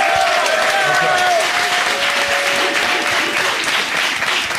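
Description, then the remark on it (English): An audience bursts into loud, sustained applause with cheering, steady dense clapping throughout and a few high whoops or whistles rising over it early on. “Clap it up for Fresh and Fit.”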